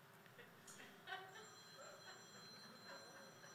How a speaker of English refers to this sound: Someone's phone.